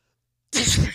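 A single loud sneeze, made as an attempt to sneeze the word "douchebag", bursts out abruptly after a brief silence, a sharp explosive blast of air and voice that ends almost as quickly as it starts.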